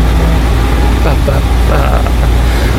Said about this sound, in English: I think my window unit is probably very loud in the background, so I apologize for that.